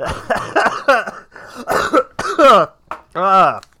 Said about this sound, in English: It's bad that we both, when we laugh, we start coughing. Yeah, I'm, you know. We gotta quit smoking.